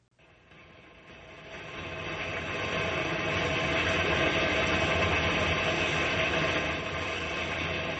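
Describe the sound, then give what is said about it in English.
An old train engine chugs and rattles steadily in a rainstorm, the dense hiss of heavy rain swelling over the first few seconds and then holding loud and continuous, with no voices. “We're just a couple of guys plunking along in an old engine in a rainstorm.”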